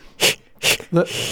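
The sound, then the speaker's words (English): A voice imitates Lamaze-style childbirth breathing: two short, sharp breathy puffs, then a brief voiced huff that trails into a longer, steady hissing exhale. “Oh, you're doing the breathing.”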